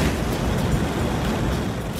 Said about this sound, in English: I have in my hand a special Lotus lighter, a prototype that was given to me by the folks at Lotus from the cigar retailers at the Cigar Retailers Convention this past July. Has 2 jet flames that angle at about a 30-degree angle.